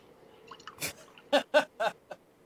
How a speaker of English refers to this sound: Man's pouring a beer into bourbon.